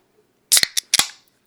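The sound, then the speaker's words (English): A beer can cracked open: a few sharp metallic clicks and a pop, followed by a brief fizzing hiss that quickly fades. No one speaks. “Thanks, everybody, for cracking a cold one with us.”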